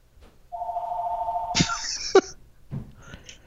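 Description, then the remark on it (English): A telephone rings with a sustained electronic tone, followed by a brighter warbling burst and a sharp click, moderately loud, with no one speaking. “Do you need to get that phone call, by the way? Hey, Tommy, you want to get the phone?”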